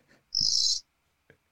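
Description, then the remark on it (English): A single shrill, high-pitched cricket chirp lasting about half a second, with near silence around it apart from a couple of faint clicks. “Is there a cricket near you? There has to be.”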